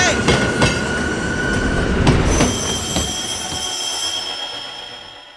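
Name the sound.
train rolling on rails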